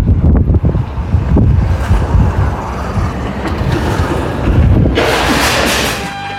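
nature, wind buffeting the microphone

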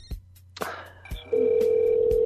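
signal or alarm, telephone dialing out

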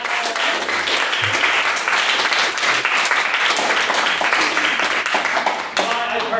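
crowd, round of applause

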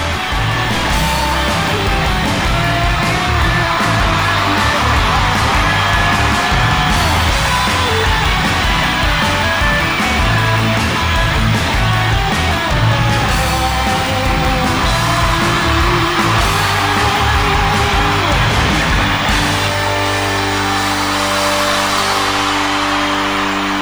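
crowd, audience cheering and yelling

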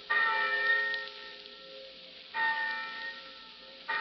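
signal or alarm, college bell ringing

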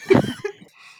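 human body sound, coughing

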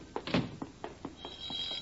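household object, telephone ringing

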